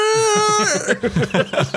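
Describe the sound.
A voice imitates a baleen whale call with a long, high, wavering tone that bends and slides, then breaks into a string of rising and falling warbles, fairly loud and heard alone.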